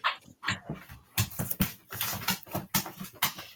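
A dog in a room whimpers and makes short yipping, panting noises, a restless series of bursts over a few seconds with no one speaking.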